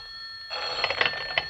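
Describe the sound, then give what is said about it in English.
A telephone bell rings at home a few minutes after a grandfather clock struck 11, with a bright, metallic trill, steady tones overlaid by rapid clattering strikes that swell in quick bursts. It starts abruptly after a moment of quiet and has no voices. “A few minutes after the grandfather clock struck 11, the telephone rang.”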